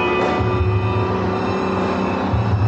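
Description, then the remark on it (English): A bus engine speeding up: a loud, steady drone with a deep rumbling low end and a faint whine on top, holding strong throughout with no voices. “This bus is going too fast.”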